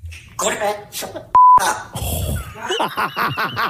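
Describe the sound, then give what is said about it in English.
A secondhand pet parrot, taught obscenities by its original owners, rattles off phrases in a raspy, squawking voice; one word is covered by a loud, steady censor beep lasting about a quarter second before the chatter continues. “I grew up with a guy whose mom got a secondhand parrot and didn't realize that the original owners taught it the filthiest things that you could ever teach a parrot.”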